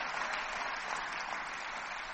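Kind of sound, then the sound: crowd, audience clapping hands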